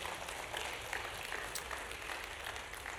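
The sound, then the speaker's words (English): A church audience claps together as a clap offering of praise to the Lord, a dense, steady wash of applause, many hands blending into continuous crackle that holds at an even loudness throughout, with no voices over it. “Come on, give a clap offering of praise to our Lord.”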